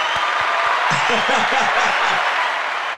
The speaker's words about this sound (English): What is that? Is that an audience? Yeah, it's applause.